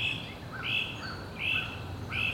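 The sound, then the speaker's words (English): A great crested flycatcher gives raucous, rasping calls, three harsh bursts in steady succession, clear over a low background hum, with no talking. “Pretty soon, we hear the raucous rasp of a great crested flycatcher.”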